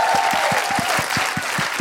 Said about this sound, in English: Okay, just a big round of applause and thank you to the BFI for having us. Woo!